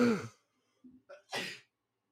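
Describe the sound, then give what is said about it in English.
A single forceful sneeze comes after a couple of short catching inhales, ending in a bright, breathy burst and then silence. “I'm about to sneeze, so God bless myself.”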